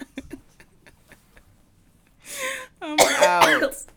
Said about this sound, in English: Oh God, sorry guys. I'm going to be coughing, possibly blowing my nose. No, not the blowing the nose. No, it might happen.